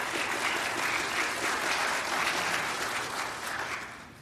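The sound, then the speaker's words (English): A crowd claps in sustained, dense applause for family members asked to stand up and be recognized, a steady wash of many hands that holds loud for several seconds and then begins to taper off near the end. “I think a round of applause would be appropriate.”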